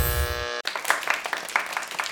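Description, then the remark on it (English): A brief buzzing musical tone cuts off abruptly, followed by an audience breaking into applause: dense, overlapping claps that carry on steadily and fairly loudly to the end. “Okay, you can stop clapping now.”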